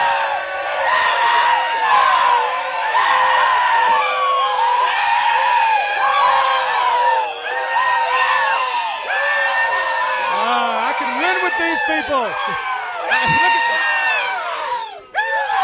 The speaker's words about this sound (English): A Rebel Yell so loud that it shakes the foundation of that pole that our flag came down from, but that it will go up again one day. And if we believe that, let's let them hear it. One, two, three, Rebel Yell!